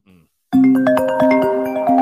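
A phone ringtone for an incoming call bursts in loud after a brief murmur, playing a bright melodic chime with steady sustained tones and a repeating rhythmic pattern.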